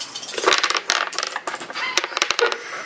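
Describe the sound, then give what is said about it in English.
Dice are rolled onto a table for a perception roll in a tabletop game: a rapid clatter of small hard objects tumbling and knocking, with bursts of sharp clicks that settle briefly, then rattle again, fairly loud, with no voices. “When I roll all my dice at the same time, it's always the one on the common dice.”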